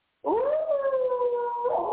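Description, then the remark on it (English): A single drawn-out wolf howl from a 1931 movie swells up quickly, then holds a steady, slightly wavering tone for nearly two seconds, loud, with no talking around it. “That movie is now 92 years old, and he had the sound of a wolf, and he, I did him back.”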